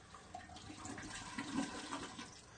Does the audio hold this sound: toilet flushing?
yes